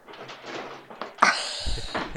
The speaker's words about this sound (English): I think we might be able to hear some rustlings coming from Essex. You can hear her rustling around now. She's probably just trying to. Yeah. She's going through drawers now.